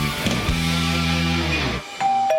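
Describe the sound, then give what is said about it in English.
A doorbell chimes a ding-dong: a long, ringing low tone that fades out, followed by a brief higher note, with a busy background bed running underneath throughout. “Do you hear that? That's your family coming round to your new house for Sunday lunch.”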